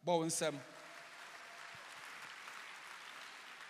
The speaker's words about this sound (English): Clap.